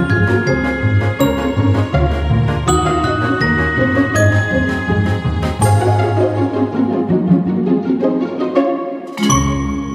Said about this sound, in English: It's still the same on Mac. On Windows, it's different now, finally, thankfully. But there's something about the Skype ringtone that is just, it like bubbles up all the anxiety in me in like a really bad way.